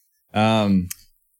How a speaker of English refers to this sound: Yeah, I heard you clicking your lips. I heard you smacking them lips, boy.